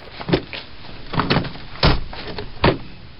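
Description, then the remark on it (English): A mother bangs on a car windshield: about five heavy, dull thuds in an irregular rhythm, some landing in quick pairs, loud and with no voices. “Mother banging on windshield.”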